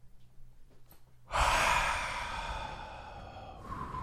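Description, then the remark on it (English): A long, breathy yawn begins after a brief quiet pause, drawn out for a few seconds, loud and airy, with no talking. “I was yawning through that one.”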